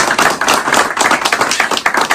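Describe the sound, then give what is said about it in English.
A crowd at a fishing seminar applauds steadily, many overlapping claps forming a dense, bright patter that stays loud and even for a couple of seconds with no voices. “We're just gonna give him a round of applause for everything.”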